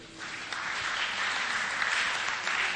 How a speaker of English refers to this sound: These are the, please, all members of FCBPI, can you stand? Both active, inactive, future active, you know? Yeah. Stand up. Good, good, good, good, good, good, good. Mm-hmm. Yeah. Businessmen and professionals. And professionals. Clap for them.